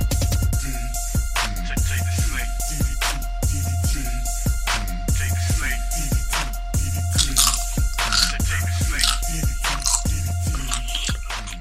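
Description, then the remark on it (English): Loud, steady crunching as someone chews a crisp snack, with repeated sharp crackly bites about once a second over a constant low electrical hum. No one speaks. “I just wanted to know how much crunch sound these would make.”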